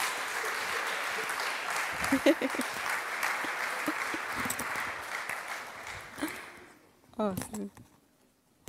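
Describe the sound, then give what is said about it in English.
An audience applauds three guests as they come up to join the host, a dense, steady patter of clapping for about six seconds before it quickly dies away. A man's voice then speaks briefly as the room goes quiet. “Let's give them a clap.”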